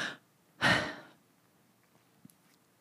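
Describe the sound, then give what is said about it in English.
A crying person sniffles into a microphone: a brief nasal sniff is followed by a longer, louder wet sniffle with a breathy hiss, then quiet with a couple of faint clicks. No one speaks. “And now I'm crying and now I'm going to fucking sniffle on the mic.”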